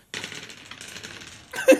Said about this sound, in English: I had a tower of sixes and it just fell over. I was like, fuck.